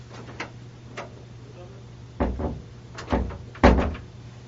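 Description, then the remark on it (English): Someone repeatedly yanks at a stuck door that cannot be opened from this side, producing a few light knocks followed by heavier clunks and rattles that grow louder, while the door stays shut, over a low steady hum. “The door can't open from this side.”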